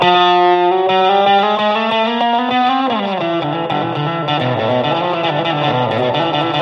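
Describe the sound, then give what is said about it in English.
An electric guitar with its tone knob fully open plays sustained, mildly overdriven notes that bend and slide, then shifts into busier chords; with the plexi drive turned off, the tone is darker and missing its sparkly highs. No one speaks. “you can hear that we lost that high end there because I turned off the plexi.”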